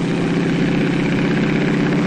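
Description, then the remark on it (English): The propeller plane Spirit of St. Louis roars steadily and loudly at full power as it rolls down a muddy runway and takes off in 1927, a dense continuous drone with no voices. “Twice its wheels left the ground, only to return. And then the plane was airborne.”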